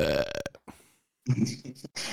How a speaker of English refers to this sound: The burp was perfectly timed for after that.